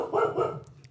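A female dog barks after finding something, a couple of quick, loud yaps followed by a short pause and another sharp bark cut off at the end, while it rains outside. No one speaks.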